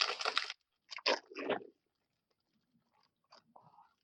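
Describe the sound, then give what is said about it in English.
Loud crunching of crispy oven-baked, spicy fried chicken–flavored snack chips being bitten and chewed, with three sharp bursts in a row followed by a few softer, quieter chews. “These are oven baked, so they're healthy.”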